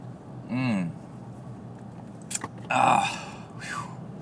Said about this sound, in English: Hold on, I'm going to have a sip of coffee. Well, I'm going to talk way far away from the mic while I sip.